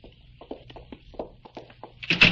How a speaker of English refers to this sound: Stop. Open the door. Go ahead.